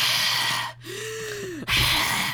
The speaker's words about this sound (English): I try not to make undue noise. Tone down your mouth breathing, would you? Jeez.